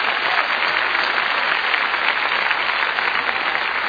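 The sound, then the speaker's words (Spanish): A crowd claps hands for the Lord in sustained, dense applause, a steady wash of overlapping claps with no individual beats standing out, loud and even throughout with no voices. “Dele palmas al Señor de la gloria.”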